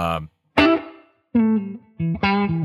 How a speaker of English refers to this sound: Now, if I turn on, this is a spring reverb from the Golden. It's kind of because the Tweed Deluxe doesn't have a spring.